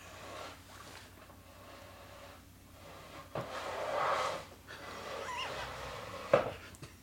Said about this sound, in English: I'm trying to make the Chewbacca sound with the chair on the floor. It's not working.